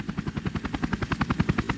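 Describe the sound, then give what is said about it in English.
Rhythmic thudding of approaching helicopter rotor blades bringing 6 to 12 more patients for surgery, a steady rapid chop with no voices, the beat holding even and insistent throughout. “And I remember at times we'd have it almost over and you'd hear the helicopters coming.”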